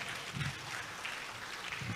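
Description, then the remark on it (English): A church audience in East Legon claps together for themselves in a steady, dense patter of many hands, moderately quiet, with no clear voices over it. “So the rest who didn't clap, you have not sacrificed for somebody before.”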